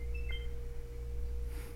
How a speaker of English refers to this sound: It's already having me put in the Wi-Fi password. It plays a little tone as it's connecting.